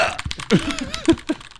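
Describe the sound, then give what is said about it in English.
Several sharp, irregular clicks of keys being tapped on a purchased computer keyboard with tactile keys, moderately loud, with faint vocal murmurs mixed in. “So what Josh has pulled up is his keyboard that he purchased.”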